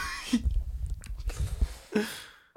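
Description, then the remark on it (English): Someone gags and retches as food comes back up, a few strained, throaty heaves with wet, rough bursts of breath between them, no words spoken. “Ooh, I almost threw up.”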